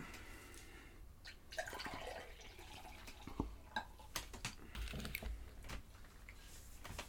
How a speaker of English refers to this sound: This is the Brew for Dudes Coffee Stout. Yeah. Here, let me hand you cups and let you pour. There we go.